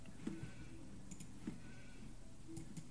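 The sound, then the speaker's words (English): Several short sheep bleats from a video game, spaced irregularly over a steady low background hum, with occasional faint high clicks. “Yeah, basically, sheep change player based on whichever, like... They change owner based on who's closest to them.”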